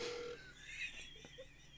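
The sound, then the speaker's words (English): A few short electronic telephone tones, one steady beep and then two brief blips, sound faintly against a quiet, slightly hissy background. “Who's dialing in? Who's dialing it?”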